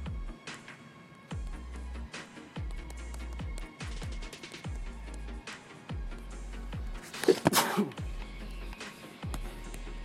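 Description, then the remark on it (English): A single sharp, loud sneeze bursts out near the end, standing out over a steady backdrop of deep, rhythmic thumping beats. “Bless you.”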